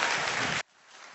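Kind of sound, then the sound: crowd, audience applauding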